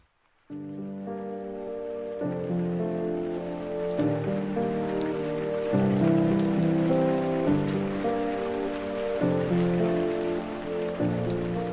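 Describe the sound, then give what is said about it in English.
Steady rain patters continuously for the whole stretch, a dense hiss of drops, layered over slow, sustained musical chords that shift every couple of seconds. No one speaks. “It rained for 10 days and 10 nights straight after she went missing.”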